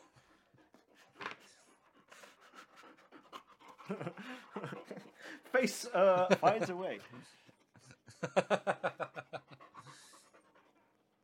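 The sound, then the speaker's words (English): A dog pants in quick, rhythmic breaths, with a burst of steady huffing near the end, while people talk over and around it. “You can hear my dog now.”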